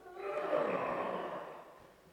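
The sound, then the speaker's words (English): A single long, heavy exhaled breath with a raspy, strained quality, made by a person voicing the effort of straining; it swells early, holds, then fades over about two seconds. “What kind of heavy breathing sound would you make if you were straining and struggling?”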